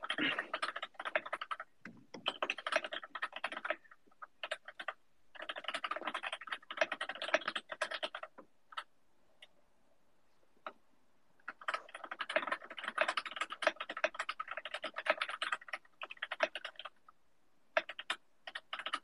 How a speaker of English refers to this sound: Typing ASMR right there. Yeah, I hope you guys like that. I slowed it down for you.